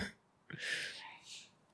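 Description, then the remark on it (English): One sharp sneeze: a sudden explosive burst that trails into a breathy hiss, followed by quiet with no talking. “Gesundheit.”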